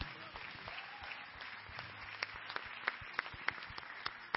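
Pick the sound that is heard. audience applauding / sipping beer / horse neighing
audience applauding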